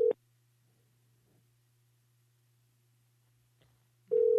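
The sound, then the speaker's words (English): A steady electronic phone ringback tone sounds briefly during an outgoing call to a grandmother, falls silent for about four seconds over a faint hum, then starts ringing again. It is moderately loud, with no one talking. “Answer the phone, Nana.”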